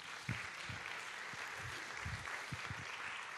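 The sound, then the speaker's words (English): A crowd of people claps steadily to give the Lord a round of applause, a dense wash of applause with scattered louder individual claps standing out, sustained and fairly even throughout with no voices. “Come on, give the Lord a good round of applause.”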